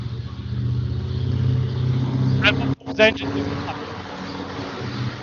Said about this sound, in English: You kind of broke up there at the end there